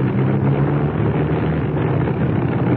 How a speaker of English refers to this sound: I'm not sure. I don't like the sound of that engine. Neither do I.